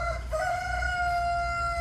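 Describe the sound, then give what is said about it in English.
A rooster by a chicken barn crows once in a long, drawn-out call, loud, with a low background rumble and no one speaking. “Back by the chicken barn”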